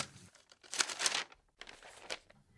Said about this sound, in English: The rustle of papers as they were crumpled, folded, glued, and set, pushed against the silence of the room.